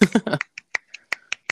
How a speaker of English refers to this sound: Giving you snaps, those my finger snaps. Is that what those were? that's what that is. Finger snap. Okay. I'm doing the coffee shop snap.